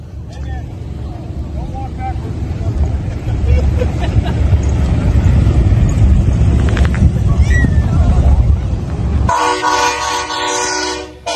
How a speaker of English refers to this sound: Huh, honk honk. Lots of honking.